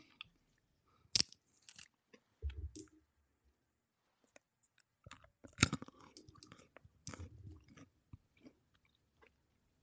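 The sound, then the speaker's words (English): Crisp crunching of a snack being chewed: sharp crackling bites come in irregular bursts with short pauses between, loud, with no voices. “Oh, really crunchy.”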